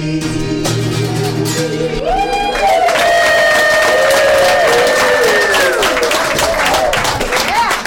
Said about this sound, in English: Applause went on for a long time, and we convinced her to do an encore,